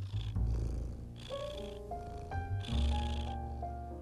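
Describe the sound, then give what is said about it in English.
A cat named Rabbi purrs steadily while curled up getting belly rubs, a continuous low rumbling that swells and eases in rhythm with its breathing, with soft higher tonal hums drifting over it and no voices. “Did you hear that? Isn't it just so soothing? Maybe you're not a cat person and you're like, okay,”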